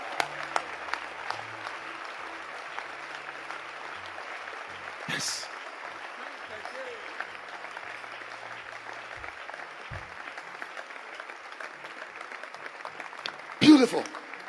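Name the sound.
audience clapping hands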